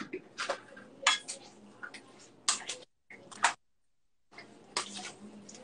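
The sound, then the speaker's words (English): Ingredients, with about a quarter cup of oil drizzled in, being stirred in a bowl with a big spoon: the spoon clinks and scrapes against the sides in an irregular rhythm of bright, sharp knocks, with a couple of brief silent breaks and no talking. “And then we just want to incorporate everything.”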